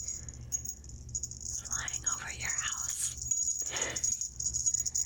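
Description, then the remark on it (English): A jingle bell, held up during a guided Christmas visualization exercise, shakes steadily throughout, a bright, high metallic shimmer with brief jangly bursts, while a soft whispered voice drifts in underneath partway through. “I have a jingle bell right here. And I want you to just listen. Listen to the bell and picture Santa's sleigh.”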